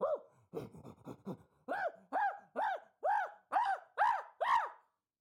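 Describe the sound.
A person imitates the noise of agitated chimpanzees fighting: a few quick breathy pants build into a loud series of rhythmic, rising-and-falling hoots, eight or so in steady succession, growing slightly louder toward the end.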